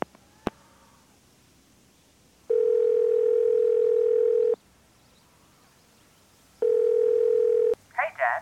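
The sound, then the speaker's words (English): A telephone dial tone after hanging up: a click, then two long, steady electronic tones, each a couple of seconds with a pause between, loud. A voice begins right at the end. “Just got off the phone”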